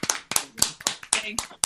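A quick, slightly uneven run of about eight sharp hand claps, each a crisp, bright smack with a short ring-out, fairly loud and with no talking over them.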